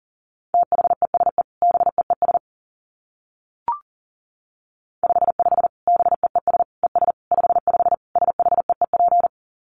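Rapid Morse code at about 40 words per minute: a steady mid-pitched tone keyed into fast dits and dahs, in two long bursts split by a short pause with a single soft click, and no voices.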